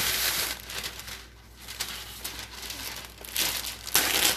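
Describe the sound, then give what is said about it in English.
Crinkling of wax paper being handled, a steady crackly rustle that swells into sharper bursts near the end, with no one speaking. “Don't we have parchment paper? Oh yeah, perfect. Is wax paper parchment paper?”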